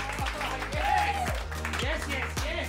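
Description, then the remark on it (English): A live comedy show audience at the Potosium claps and applauds steadily throughout as a guest is welcomed to the stage, a dense wash of many hands with faint voices and cheering mixed in. “Give me a round of applause. Start clapping.”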